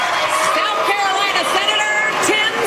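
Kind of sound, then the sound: crowd, crowd booing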